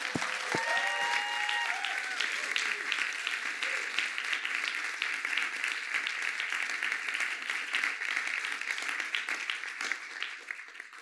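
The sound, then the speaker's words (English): A church audience applauds to welcome a speaker in a dense, steady wash of clapping that holds for about eleven seconds, with a few brief vocal whoops rising at the very start. “I want us just to applaud, not as a way of saying, kind of building something up, but rather saying, as we applaud, we're saying, we're for you, and we're open to receiving from you.”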